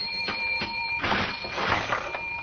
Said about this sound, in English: My goodness, I heard that cash register ringing all the way downstairs in the stockroom